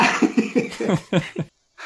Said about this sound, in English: You know, I cracked a rib, so ooh, every time I cough, it hurts like hell.